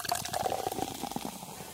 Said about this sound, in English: I'm pouring champagne for you guys. On me.